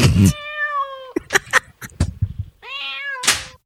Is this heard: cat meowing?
yes